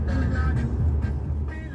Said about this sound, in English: So I get back in my car and drive to the small city of Greenfield, about 30 minutes away.